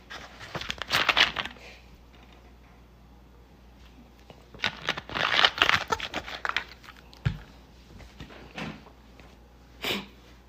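food or drink, sipping a soft drink

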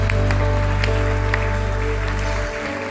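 crowd, audience cheering and applause

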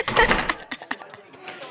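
sound effect, door slamming shut

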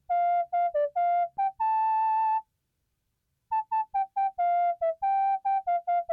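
sound effect, whistled melody

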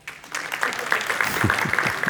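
crowd, applause

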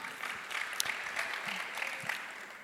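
crowd, audience clapping

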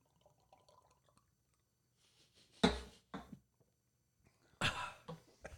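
human body sound, gulping down a drink

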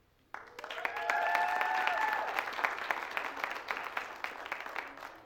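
crowd, audience applause

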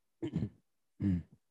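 human body sound, cough away

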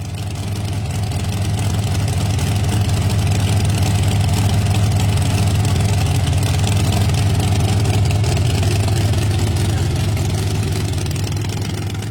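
vehicle, car engine idling

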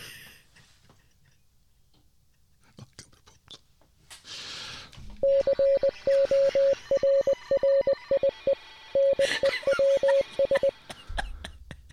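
signal or alarm, morse code beeps

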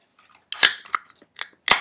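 food or drink, beer being opened

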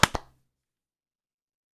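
signal or alarm, hand clap

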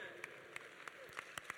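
crowd, audience member clapping hands

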